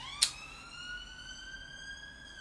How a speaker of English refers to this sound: Sorry, that's the police. No, it's not. It's a ambulance.